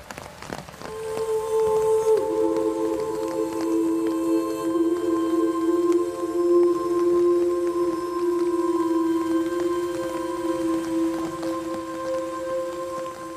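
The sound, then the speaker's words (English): Steady rain from a sound design patters throughout, a constant hiss of drops, with sustained low musical tones humming underneath. No one speaks. “I think with the sound design and the music and that rain, of course, that you hear.”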